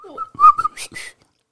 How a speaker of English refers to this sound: The other one that I still use to this day is a whistle. And I probably won't be able to do it now since I'm trying to do it on a microphone. But it just is simply this sound, right?